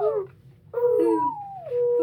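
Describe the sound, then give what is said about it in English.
A child imitates an owl's hoot with a short falling call, then a longer wavering, howl-like note, voiced and fairly loud with a slight pause between. “An owl? What's that? What does an owl sound like?”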